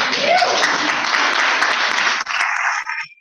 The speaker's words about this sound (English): Look, first things first, we had some technical challenges here, and I just want to give a big shout out, big round of applause to the ad-libbing king. Just another round of applause just for the filler, yeah?